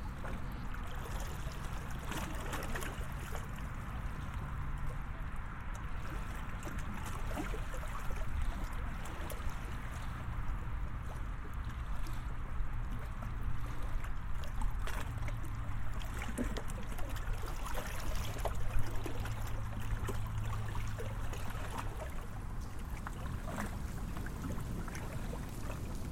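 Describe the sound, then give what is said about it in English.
Water of one of the Great Lakes laps steadily against a shore littered with beer bottles, fast food wrappers and an old soiled sock, a continuous wash of soft splashes and gurgles with no distinct rhythm, holding an even level throughout with no voices. “whose water, part of the Great Lakes, holds around 20% of the fresh water on Earth, whose shore is filled with beer bottles, fast food wrappers, and an old soiled sock.”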